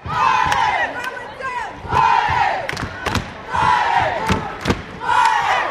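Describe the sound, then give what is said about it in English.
Crow fans in the rooting section at a high school basketball tournament in Laurel, Montana, where the Plenty Coup Warriors play Fromberg High, let out repeated rising-and-falling war cries in roughly four waves, loud and sustained, punctuated by sharp thumps and claps between the swells of yelling. “In the Crow rooting section, emotions run high. War cries erupt at every Crow basket”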